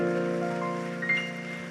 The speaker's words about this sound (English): Come on, let's really clap unto the Lord.